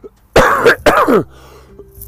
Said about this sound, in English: Oh, my God. Excuse me, guys. They're burning leaves, of course. That's why I'm coughing.